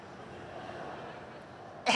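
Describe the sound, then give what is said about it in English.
Near-silent background hiss, then a single sudden, loud cough bursts out at the very end, cut short; a person vocally imitating the cough of an urchin. “you hear, it is the unmistakable sound of an urchin with a cough.”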